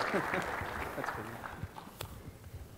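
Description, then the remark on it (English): An audience at a talk on AWS EC2 performance claps in a dense, steady patter that gradually thins out over a few seconds, with voices talking underneath the applause. “Yeah, let's see the clap for you this time.”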